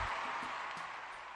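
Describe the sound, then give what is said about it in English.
A golf crowd at Augusta applauding, standing, a dense, steady wash of many hands clapping at once, fairly soft, with no voices standing out. “This, the crowd is standing on his feet here at Augusta, is the Cigar Authority.”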